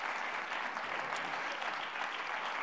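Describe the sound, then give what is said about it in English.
An audience claps their hands unto the Lord in a steady, dense burst of applause, many overlapping claps forming a continuous crackling wash at an even, fairly loud level throughout. “Oh, come on, if you're thankful for that, clap your hands unto the Lord.”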